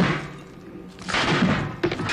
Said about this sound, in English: Now, I'm going to give you a little demonstration. This is a steel chair, and this is a steel chain. With a small swipe of my hand.